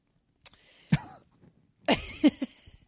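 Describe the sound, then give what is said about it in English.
A person coughs several times, with harsh, raspy bursts spaced irregularly and a short pause between the first few and a heavier pair near the end. “That's what you woke up to this morning, huh? Me coughing.”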